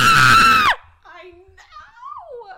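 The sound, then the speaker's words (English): A woman lets out a loud, excited yell that lasts under a second and cuts off sharply, followed by softer, quieter vocal sounds. “Maybe I shouldn't yell that loud.”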